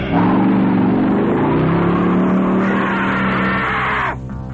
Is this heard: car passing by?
yes